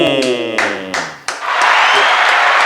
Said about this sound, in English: Gotta give you a clap up.